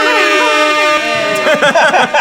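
A loud, blaring air horn blast holds steady for over a second, then voices talk over its fading tail.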